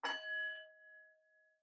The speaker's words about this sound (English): There's the bell.